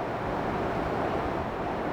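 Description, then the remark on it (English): A steady, dense roar of traffic on Broad Street in Philadelphia, a continuous rumbling wash of car and bus engines with no voices and no distinct horn blasts standing out. “There's the steady stream of cars, buses chugging along, horns honking in frustration.”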